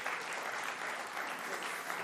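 small round of applause

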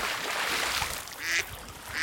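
ducks quacking

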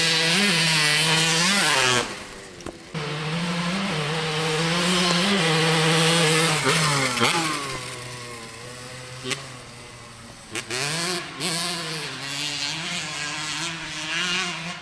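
dirt bike engine revving

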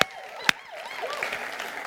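audience applause

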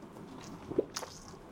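drinking water

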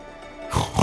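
pig oinking and grunting

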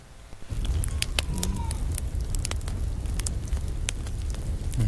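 crackling bonfire

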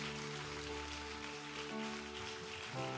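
audience applauding

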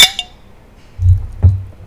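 shot glasses clinking

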